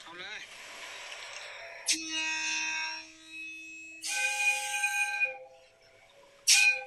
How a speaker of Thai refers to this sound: อ๋อถ้าอันนี้ฮิตาชิคือตัวนี้จะเป็นรถที่เสียงหวีดจะคล้ายรถจักรไอ้น้ำ ให้ฟังอีกรอบให้ฟังอีกรอบนะ